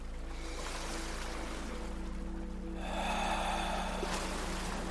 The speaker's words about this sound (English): Now go ahead and smell that salt air, feel the sand with your toes, and listen to the sounds of the crashing waves.